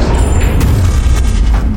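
A huge, loud explosion of a weapon, Arjun's Brahmastra shot at the Sangsaptaks: a sharp bang cracks out, then a heavy, deep rumble rolls on and fills the whole moment, overwhelming, with no voices.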